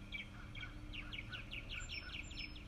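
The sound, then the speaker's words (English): A bird in a nearby tree chirps repeatedly, a quick series of short, bright notes in a steady rhythm over a low background hum, with no one talking. “Well, we had a bird on the podcast, ladies and gentlemen.”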